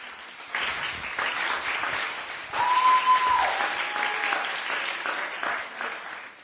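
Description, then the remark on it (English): An audience applauds an upper elementary class steadily, a dense wash of many hands clapping for several seconds at a fairly loud, even level, with a thin whistle-like tone briefly riding over it midway. “Let's give another round of applause, please,”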